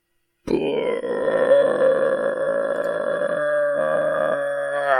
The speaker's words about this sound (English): Harry tried to argue back, but his words were drowned by a long, loud belch from the Dursley son Dudley.